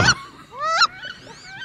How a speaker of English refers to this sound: we double-checked on that one, and we all agree that that is... wood duck. The wood duck, right. All right. And you hear one real close and one far away, so...